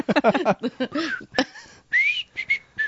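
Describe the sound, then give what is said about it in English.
Someone whistles a short, bright melody, attempting the Andy Griffith tune: a run of clear sustained notes with brief gaps between them, following a moment of breathy vocal sounds at the start. “Let me see if I can do the Andy Griffith thing.”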